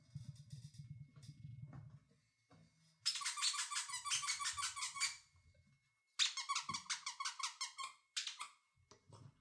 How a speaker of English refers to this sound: Keeping the squeaky toy.